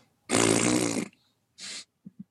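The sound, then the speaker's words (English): A person blows a loud, buzzy raspberry lasting under a second, then a shorter second one, followed by two faint low puffs. No talking. “This raspberry is accompanied by 5 bees straight across above Garfield's head to indicate, I believe, this noise.”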